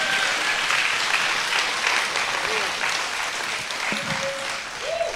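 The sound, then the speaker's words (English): A church audience claps hands for the Lord in sustained, dense applause across the whole stretch, loud, with a few faint voices and brief tonal sounds rising through the clapping. “Y'all give the Lord a hand clap while I drink some water.”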